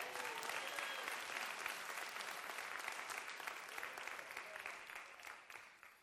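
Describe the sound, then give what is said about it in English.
An audience claps steadily, many hands making a dense, continuous patter that stays fairly loud throughout and tapers slightly toward the end, with no one speaking. “Somebody get a Lord a hand clap.”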